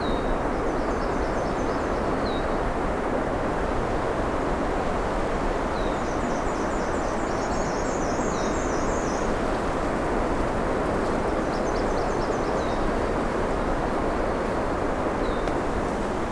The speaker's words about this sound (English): Something else singing here, and I don't know precisely what it was. I think it was a myrtle warbler. I'm not sure.